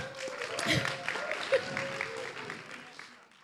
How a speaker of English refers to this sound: Yay! Let's give Aaron a round of applause.